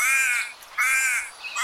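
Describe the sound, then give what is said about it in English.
A raven sitting in a tree at the edge of a city park on a foggy morning caws loudly, two harsh, rasping calls in quick succession with a third starting at the end, and no other sounds. “Among them was a raven.”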